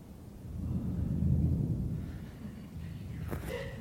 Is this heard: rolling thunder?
yes